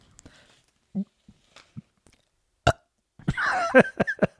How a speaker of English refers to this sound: It would be really badass if you belched right now.